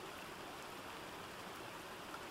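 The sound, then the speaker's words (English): A steady, unbroken rush of water from a waterfall fills the whole stretch, a dense hiss with a soft low rumble beneath it, constant in level and with no voices. “The noise of rushing water soon came to their attention, but it wasn't the babbling noise of a stream or the flow of a river.”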